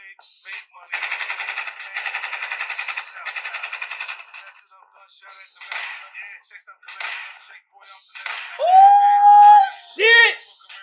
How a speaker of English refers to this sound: Now I gotta get the gunshots.